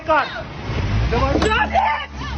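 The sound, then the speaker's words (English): A car engine rumbles steadily underneath people talking, a low continuous drone as a woman speeds off in the car while a man outside grips the steering wheel, moderately loud throughout. “They speed up.”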